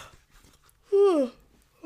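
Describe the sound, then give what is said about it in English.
A single brief voiced yawn, a loud tonal sigh whose pitch slides steadily downward, set against quiet breathy murmuring, with someone starting to speak right at the end. “Speaking of me yawning, I already can't imagine doing this forever.”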